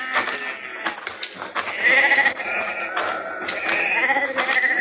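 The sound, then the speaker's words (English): Several sheep bleat over one another in a steady, overlapping chorus, loud, with wavering nasal cries continuing throughout. “These your sheep?”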